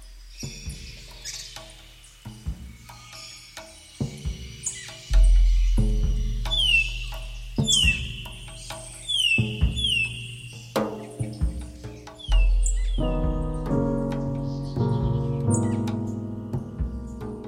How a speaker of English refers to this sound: So it starts with this bird song, and I think I remember reading somewhere that the bird song is actually the origin of the piece.